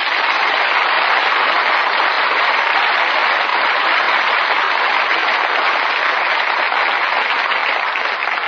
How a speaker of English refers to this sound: And now you can all sit back and relax and join me in well-earned applause for Richard Widmark, Paul Douglas and Joyce McKenzie.